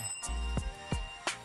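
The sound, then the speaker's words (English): A bell named Taco, introduced as the co-host of the show Feeling the Breeze, rings out in four quick, evenly spaced strikes, each chime leaving a bright metallic tone that lingers between hits. No one speaks. “And as always, I gotta introduce you to my co-host, my sidekick, my ace, my dog, my nigga, Taco, the motherfucking bell.”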